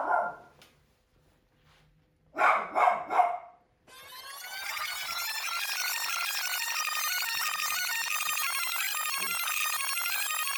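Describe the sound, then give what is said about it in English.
A dog gives a single bark, then a quick burst of three sharp barks, followed by a steady, bright electronic ringtone that plays continuously to the end. “There's no barking in the writing room!”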